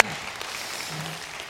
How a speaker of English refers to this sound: This is the last Sunday that we have to, you know, there's no distance, and you can clap if you want.